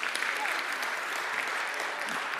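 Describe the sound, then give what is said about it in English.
An audience applauds volunteers as they are asked to sit down, a steady, dense wash of many hands clapping at once, loud and sustained throughout with no pauses or voices standing out. “I need loads more volunteers, but I think what we'll do is we'll give these guys a clap and ask them to sit down.”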